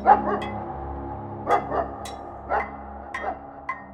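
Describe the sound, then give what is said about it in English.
Hungry hunting dogs bark and yowl in irregular bursts in the woods at nightfall, going after a bear caught in a trap, several voices overlapping over a drawn-out howling tone, with no one speaking. “And their hungry yowling carried through the woods and compelled the bear to lurch back against the chain.”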